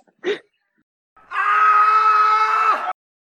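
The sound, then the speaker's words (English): A brief sniff-like puff, then a loud, sustained nose blow lasting about a second and a half, with a steady honking tone that drops just before it stops. No one talks. “I'm just gonna blow my nose.”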